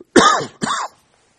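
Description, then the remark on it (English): Two moderately loud coughs in quick succession from a man who has been sick this week with an illness settled in his lungs, the first longer and rougher, the second shorter, each with a raspy, slightly voiced quality, followed by silence. “I've been sick this week, and it's settled in my lungs, so I won't sneeze so much as maybe cough a little.”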